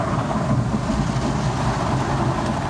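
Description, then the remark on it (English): Automatic car wash brushes and water spray make a steady, loud rumbling whoosh from inside the car as brushes come up the windshield and soap suds cover it, a dense churning wash of noise that continues without pause and without any voices. “It's those big spinny things that are now clinging inside of my car. We got one of them coming up the windshield here.”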